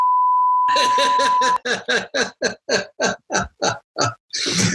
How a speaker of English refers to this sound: Well, I've got two words for you and they're going to be beeped out.